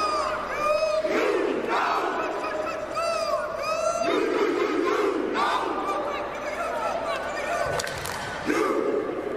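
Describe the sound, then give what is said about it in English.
A crowd at a marching band performance shouts rhythmic chants called out by a woman, in loud repeated bursts, voices rising and falling together in a steady call-and-response pattern, with a dense roar of many people sustained throughout. “She was the one calling out the chants.”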